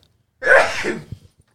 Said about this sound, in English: That was an actual sneeze. Thank you. Oh, God bless you. God bless you.